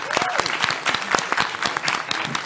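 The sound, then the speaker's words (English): An audience at a debate comparing the video games Metroid Fusion and Sonic Advance 2 claps in a dense, steady burst of applause, many overlapping sharp hand claps forming a continuous crackling wash, with faint vocal cheers mixed in. “Round of applause.”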